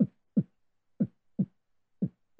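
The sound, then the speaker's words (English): A man's heartbeat, listened to by a doctor, thuds in three steady lub-dub pairs, each a deep, muffled double thump with a short pause between beats. No voices, just the low rhythmic pulse. “His heart is beating. He's still alive.”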